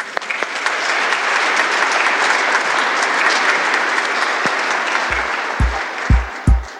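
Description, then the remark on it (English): Sustained round of applause from the audience at St. Basil Catholic Church, Brecksville, for a couple preparing for the sacrament of marriage, a dense, steady wash of clapping for several seconds, with a few low thumps near the end as it winds down. “Round of applause for them, huh?”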